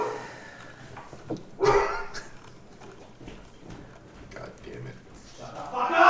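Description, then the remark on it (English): A person imitates a deep, heavy mastiff bark, with one loud gruff burst early on and another rising at the end, amid quieter background chatter. “Alright, I'm slowly getting convinced it's not a real dog.”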